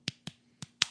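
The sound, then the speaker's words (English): Four sharp hand claps in a loose rhythm, grouped as two pairs with a short gap between, crisp, with no talking, imitating the beat of a pop song. “literally just bullshit clapping.”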